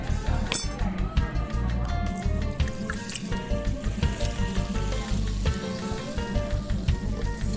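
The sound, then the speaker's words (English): Club soda fizzes and crackles as it's splashed over crushed ice packed on pressed mint leaves in a drink, a steady bright hiss lasting several seconds, dotted with small glassy clinks of shifting ice. “We just need a little splash of club soda.”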